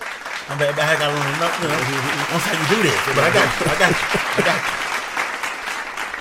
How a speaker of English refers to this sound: I'm getting a round of applause. That's cool.